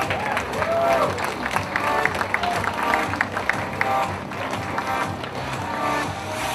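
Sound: audience applause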